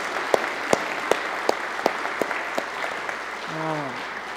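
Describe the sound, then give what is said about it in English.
Steady audience applause for a family, with a dense wash of clapping and a few sharp, evenly spaced claps standing out on top; a brief voice rises over it near the end. “Hey, let's give this family a round of applause.”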